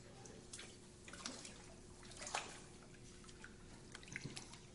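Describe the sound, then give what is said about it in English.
Warm water trickles and splashes into a basin, with scattered drips and small splashes over a low, steady hum. Fairly quiet, with no one speaking. “That's some warm water in it, sweetheart.”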